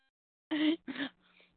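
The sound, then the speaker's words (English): A sneeze in two sharp, breathy bursts, the first slightly longer and voiced, followed by a faint, soft trailing exhale. No talking. “Sorry, I'm sneezing really bad there.”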